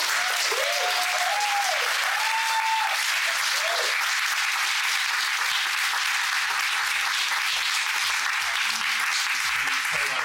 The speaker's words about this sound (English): Well, thank you so much for your wonderful insights and your time, and another round of applause for.